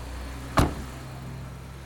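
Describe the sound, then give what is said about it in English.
A single solid thump, like a car door shutting, stands out once against a low, steady hum of an idling vehicle as someone gets into a car in Banjul, the Gambia. No one speaks. “I'm back in the capital, Banjul, and it's time to hop in a car across town.”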